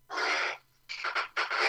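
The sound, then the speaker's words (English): A chair creaks in three strained, raspy bursts: one long groan, a short pause, then two quicker choppy creaks. The sound is fairly loud, with no talking. “Now, as a void that makes creaking sound like an old wretchedy boat, I will go on.”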